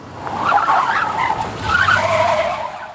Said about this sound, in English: add in some more truck scrape sounds. We're just going to make sure everybody's paying attention to the road while daydreaming about elk.